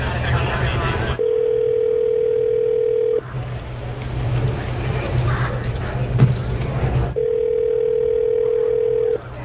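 A phone ringback tone sounds twice while waiting for someone to pick up the call, each steady tone lasting about two seconds with a pause between, heard over a constant low engine-like rumble and background noise, as though calling from a vehicle.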